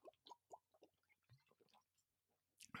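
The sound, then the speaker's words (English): Someone sips water: a run of soft, wet gulps and mouth clicks in an uneven rhythm, ending in a sudden louder clatter, with no talking. “maybe I'll take another hit of water before I do the close here.”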